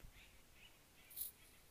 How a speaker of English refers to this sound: Some nice bird sounds over there. I really like doing the podcast outside.